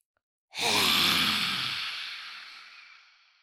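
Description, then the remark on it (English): A single loud, forceful lion's breath exhale with the tongue stuck out as far as it goes, a breathy rushing hiss that starts abruptly and slowly fades over about three seconds, with no talking. “And when you exhale, release the breath really loud, or as loud as you can in your space right now, long, and stick your tongue out at the same time, as far out as it goes.”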